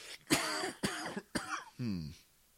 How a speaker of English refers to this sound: I'm going to cough here.